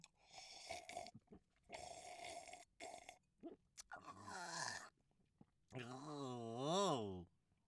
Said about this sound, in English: So, in this new recording setup, I can really indulge in some of the sounds involved in the wine tasting. For example, the sniff. Oh, or, of course, the important sip.